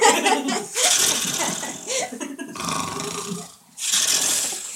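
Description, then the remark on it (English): A voice mimics a janitor snoring with rough, rattling breaths and snorts, repeated in uneven bursts over several seconds, fairly loud, with brief pauses between and a hint of laughter. “Okay, so you land in a dumpster full of garbage because it was not emptied, right next to the body of the janitor who is snoring, and there's like a banana peel over.”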